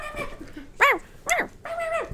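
Several high-pitched yaps from small dogs, three sharp barks in quick succession with a whiny, harmonic tone, loud with no talking.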